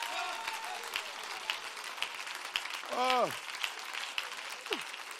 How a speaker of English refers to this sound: Oh, somebody clap your hands right now.